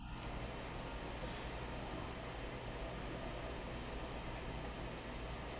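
A timer alarm beeps in quick repeated bursts, a steady electronic pattern sounding about once a second over a dense, hissy background, somewhat faint.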